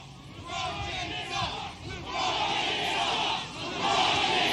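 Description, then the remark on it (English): A large rally crowd chants "LeBron James sucks" in unison, voices rising and falling in three rhythmic, loud surges of shouted phrases with a roaring wash of cheering underneath. “They're chanting LeBron James sucks.”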